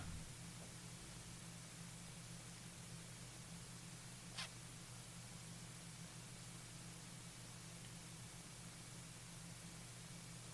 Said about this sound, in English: I think the mics sound better than before, aside from the hiss. Fucking hell, man. So they don't sound better than before. Jesus. This is what I'm trying to work out. Where is that hiss coming from?